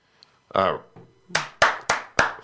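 A brief vocal exclamation, then four sharp, loud hand claps in a slightly uneven rhythm, sounding like a single person clapping rather than a full crowd.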